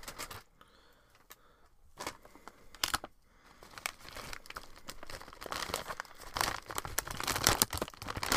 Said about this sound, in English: Gonna grab the sun chips. Hopefully not make too much noise.